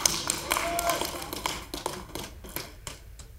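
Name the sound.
audience clapping hands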